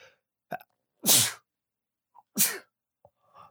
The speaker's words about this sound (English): Do you guys mind if I sneeze on the show? Do those sneezes sound like COVID? I really hope I don't have COVID.